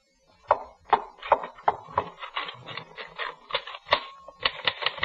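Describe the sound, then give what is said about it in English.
Mechanical typewriter keys clack in a steady, slightly uneven stream of sharp strikes, moderately loud, with no voices present. “Then I was back at my typewriter, and everything was fine.”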